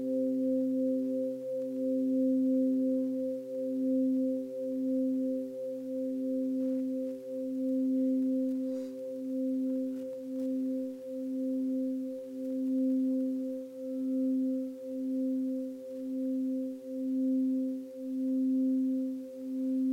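Tibetan singing bowls ring for a meditation with a steady, low humming tone that pulses in slow, regular waves, bright overtones shimmering above it and no voices throughout.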